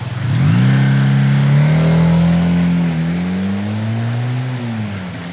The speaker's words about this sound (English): Our story begins in London, a night of slanting rain and wind. Two young women are riding a motorcycle through the storm.